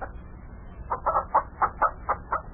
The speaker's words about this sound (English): Had the fields plowed, planted some crops, stocked up the farm with livestock and chickens. There's chickens all over the place here.